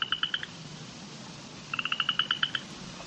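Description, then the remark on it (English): An upland chorus frog calls in two bursts of rapid, rising clicks, like a thumb drawn along a comb's teeth, with a short pause between, clear over a faint steady background hum. “it's kind of a clicking sound. It has the cadence of somebody running their thumb up a comb, mm-hmm.”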